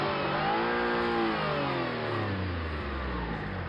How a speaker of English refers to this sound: And this is an electric car that will do it. So it's 1,000 horsepower. This is not a regular, this is not your grocery getter.